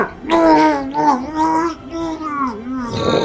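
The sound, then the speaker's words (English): A voice imitates a man's yelling muffled by a cloak pulled over his mouth: strained, wordless groaning cries that waver in pitch across a few seconds, fairly loud and unbroken, with a rougher burst at the end. “So you are able to get your cloak over his mouth. He's effectively muffled. You can hear him just...”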